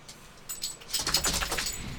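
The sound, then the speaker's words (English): A dog named Bailey shakes its head, ears flapping in a quick, rustling burst as metal tags jingle brightly, building over about a second and a half, with no voices. “Enough of the freaking ear shaking and stuff that everybody can hear.”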